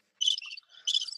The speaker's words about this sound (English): Oh, crickets are still going. Crickets.